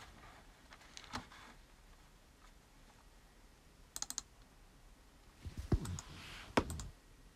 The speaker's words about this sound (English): This is the scintillating sound of me clicking. I really try and find this answer.